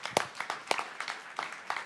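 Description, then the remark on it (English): A brief, quiet round of applause from a small audience applauding themselves for their generosity toward sponsored children, with scattered, uneven claps rather than a steady roar, and no voices over it. “And I think you should give yourself a round of applause, actually.”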